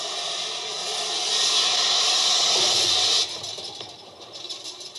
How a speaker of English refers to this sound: A watchful fireman adds the unplanned-for sound of a fire extinguisher.